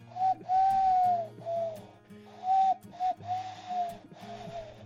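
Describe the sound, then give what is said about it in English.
A person mimics an owl with a series of breathy, whistle-like hoots, about six in close succession. The hoots are loud, with no other talking. “That's my owl impression.”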